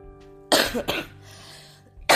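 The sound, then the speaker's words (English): A loud cough in two sharp bursts, followed by a brief quiet pause and then another abrupt cough at the end. “Funny that I cough right after I say that, huh?”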